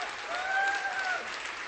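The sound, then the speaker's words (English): An audience claps their hands in a dense, steady wash of applause, with a faint sustained tone gliding through the middle and a slight swell before easing off. “Clap your hands and give God the highest praise.”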